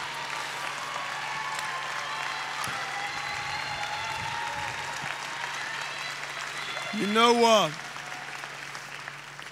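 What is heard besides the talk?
audience applause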